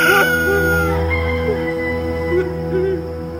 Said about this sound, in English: And at that moment, a cock began to crow.